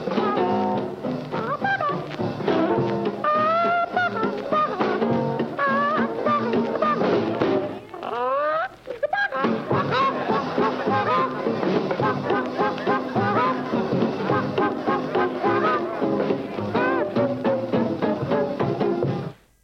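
Upbeat old-fashioned 1940s novelty jazz plays continuously, with voices imitating chicken clucking in quick, playful bursts over the band, broken by a brief pause midway.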